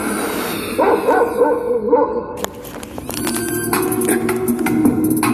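A dog whines and yips at first, then breaks into a run of sharp barks over a steady background rumble.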